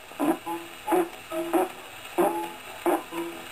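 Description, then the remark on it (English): A run of short, buzzy fart sounds repeats in an uneven, bouncing rhythm like a galloping horse, each low raspy burst followed by a softer one, with no talking. “Fait d'un cheval au galop.”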